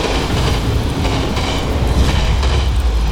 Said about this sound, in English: There's the train. Traveling fast, all right.